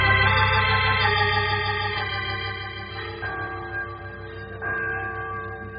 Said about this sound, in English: Oh, there goes that church bell again.